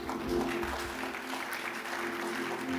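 A crowd claps steadily for God after a prayer, a dense, sustained patter of many hands filling the whole stretch at a fairly loud level, with a faint low hum running underneath.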